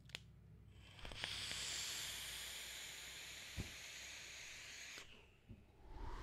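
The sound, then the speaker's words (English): A steady hiss of a vape draw on a Recoil Rebel rebuildable atomizer lasts about four seconds, bracketed by small clicks and thumps, then cuts off abruptly into near silence. “Here's the first vape off of Tropicana. Recoil Rebel.”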